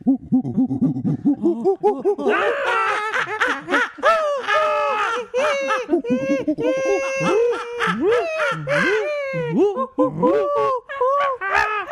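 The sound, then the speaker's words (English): Several voices imitate monkeys in a loud, overlapping cacophony of hoots, whoops and high-pitched shrieks, rising and falling in rapid, chaotic bursts for the whole stretch. “Should we do our own cacophony of monkey sounds to go to break?”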